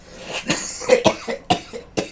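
A run of about five sharp, hacking coughs comes in quick irregular succession, fairly loud, with short breathy pauses between them and no talking.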